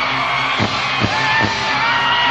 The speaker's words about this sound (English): Listen to this crowd.